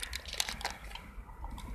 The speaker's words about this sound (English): Eat my Cliff Bar. Give me a moment. I forgot how good these things are. I'm eating the peanut butter and honey with sea salt flavor.